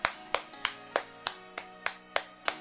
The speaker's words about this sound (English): And this is me applauding Danny Webber, who was applauding Marcus Rashford's brilliant gesture.